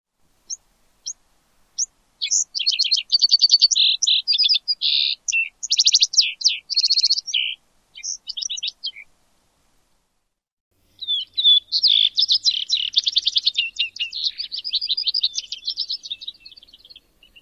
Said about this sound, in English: Vesper sparrows have an additional song type, sometimes referred to as a long song, that starts with call-like notes rather than whistles and often given in flight chases. So here's what the long song sounds like.